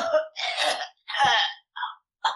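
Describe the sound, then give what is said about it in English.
A voice imitates frantic gasping for air: a run of harsh, raspy breaths, two long and loud, then shorter wheezy gulps separated by brief pauses, with no words spoken. “And, I'm sure I'm just gasping for air, like...”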